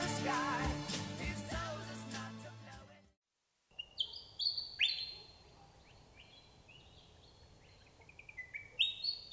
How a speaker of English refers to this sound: Willy Wagtails, gutsy as hell. They will chase off birds two or three times their size to defend their territory.